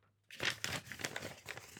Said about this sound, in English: I'm going to shuffle this around. I'm going to find a piece of paper and make it sound official, like an opening up an envelope here.